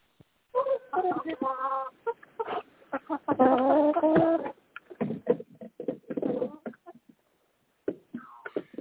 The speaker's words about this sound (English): Okay, it sounds like somebody's taking care of their chickens.